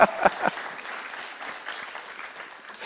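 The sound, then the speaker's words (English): An audience applauds, a dense wash of many hands clapping, with a few sharp louder claps at the very start before settling into steady, even applause that carries on throughout. “I think that'd be a good place to applaud.”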